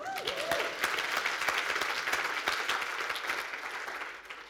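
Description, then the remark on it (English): A crowd claps for Jesus, a dense patter of many hands that holds at an even level for several seconds, with a brief cheer near the start, then fades slightly at the end. “I think Jesus deserves a better round of applause than that.”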